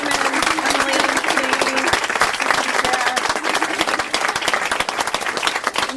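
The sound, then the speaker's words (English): An audience at an event hosted by Novel Idea applauds the readers steadily, dense overlapping claps forming a loud, sustained wash of sound for the full duration, with a faint tonal hum in the first couple of seconds. “and let's have a big round of applause for all our readers.”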